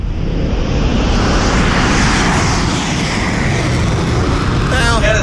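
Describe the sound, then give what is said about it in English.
A motorbike roars loudly and steadily, its rough engine noise filling the whole stretch, with a brief higher whine rising near the end. “That sounded like a bike going by.”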